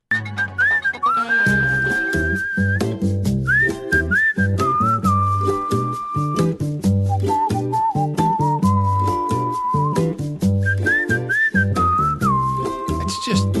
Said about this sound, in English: Whistle is so soothing. I've always loved that whistle. It can bring a calm to the craziest storm.